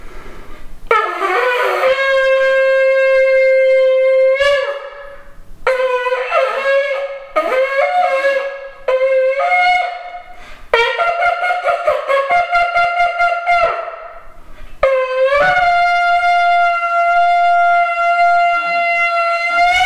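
A shofar sounded on the Day of Trumpets, blown in several long, loud blasts, each a sustained brassy horn tone with wavering pitch and sharp breaks between notes, ending on a steady held call.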